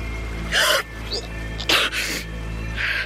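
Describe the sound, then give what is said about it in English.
A woman gasps sharply in shock at the sight of a severed human hand in a cockpit, with a few quick, breathy intakes of air over a steady low background hum. “Rosie gasped, covered her mouth, and turned away.”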